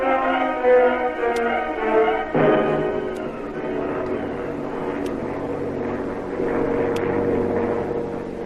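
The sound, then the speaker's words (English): A steady, loud engine drone of a giant jet airliner flying high above the earth, a dense rumbling hum with a slight shift in pitch partway through and faint regular ticks above it. No one speaks. “Racing high above the earth, comfortably seated in a giant airliner. Big old jet airliner.”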